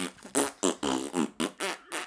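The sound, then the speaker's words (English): A rapid series of loud, buzzy fart sounds, about eight bursts in quick rhythmic succession with brief gaps between them, prominent with no talking. “I mean, imagine porno music, but with farts.”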